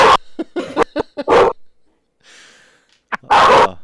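A dog barks in a quick run of sharp, loud yaps, pauses briefly, then lets out a few more barks, with nothing else around them.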